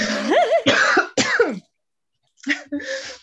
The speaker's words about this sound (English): Well, I have to cough. I think we have to stop.